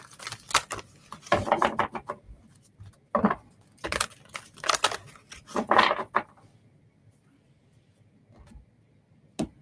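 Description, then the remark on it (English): Shuffling of a deck of oracle cards: several quick bursts of crisp, papery flicking and slapping, separated by short pauses, fading to quiet handling near the end. No one speaks. “So I'm going to shuffle for just a second.”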